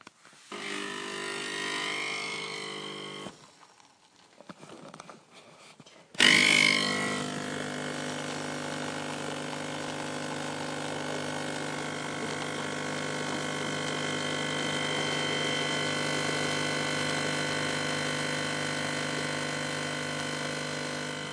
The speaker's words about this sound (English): she bought me this coffee machine, and it's great, you know, the longy thing. And it's kind of like a mini barista yoke, you know, and I like it a lot. So I'm going to turn it on now, and it's a bit noisy.